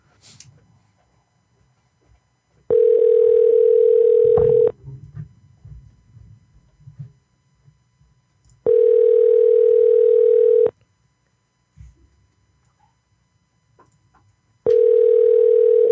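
A telephone ringback tone sounds three times, each steady hum lasting about two seconds with roughly four-second pauses between, with faint low background murmur during the gaps.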